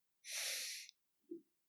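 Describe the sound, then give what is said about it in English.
A single loud cough with a harsh, breathy burst, followed a moment later by a brief, softer throat sound. No one speaks. “You went undefeated with a Talonar Supremacy suit, and I have to cough.”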